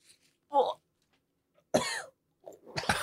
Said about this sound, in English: is blowing his nose. That's why he had to take a break.